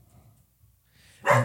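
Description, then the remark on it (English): A dog lets out one sharp, loud bark near the end, bursting out suddenly after a stretch of near silence with only a faint low background rumble. “The dog Max! Is Max! Possessed. Cut it out.”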